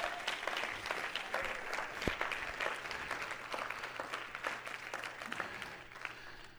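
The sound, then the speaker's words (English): An audience claps steadily, dense overlapping handclaps forming a sustained wash of applause that holds fairly even in loudness for several seconds before thinning slightly at the end. “Somebody help me this morning. Clap your hands, folks.”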